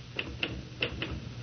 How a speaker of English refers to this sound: Listen, will you knock it off with the typing and look at me for Pete's sake?